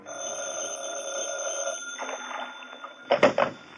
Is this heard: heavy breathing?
no